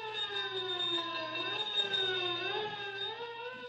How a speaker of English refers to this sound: Sirens wail as squad cars race toward the scene of the explosion.